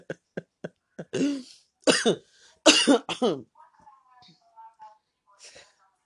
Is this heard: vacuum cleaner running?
no